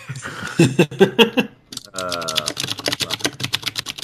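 Rapid typing on an aluminum computer keyboard, a steady clatter of crisp key clicks for several seconds, with a brief voiced sound like a laugh breaking in around the middle.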